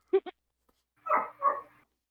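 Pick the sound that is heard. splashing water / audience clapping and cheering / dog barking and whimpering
dog barking and whimpering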